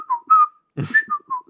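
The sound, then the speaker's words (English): A person whistles a short four-note tune imitating a mockingjay's call, clear tonal notes stepping up and down, with a breathy burst mid-phrase and no talking. “Yeah, like, it gets stuck in their head, like, how we get songs stuck in our head, and all of a sudden the Mockingjays are, like...”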